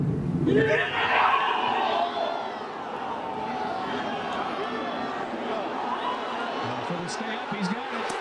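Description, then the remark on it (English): A large outdoor golf gallery erupts in a loud, sustained roar of cheering as a player drains an eagle putt on Saturday of a major, peaking in the opening seconds and then holding steady, with many voices blending into a dense wall of noise. “he drains an eagle, and Dan Hicks, as soon as it goes in”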